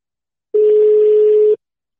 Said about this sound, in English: Oh, shit. It sounds like I'm calling a foreign land. Why is it ringing like that?